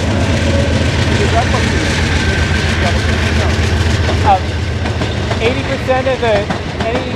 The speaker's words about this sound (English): I'll wait till the train passes.